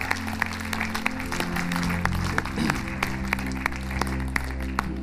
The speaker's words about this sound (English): Hey, why don't we just give a huge round of applause to some of our volunteers.